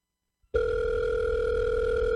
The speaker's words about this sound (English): Pick up the phone. That's really important. Come on. One ring-a-ding.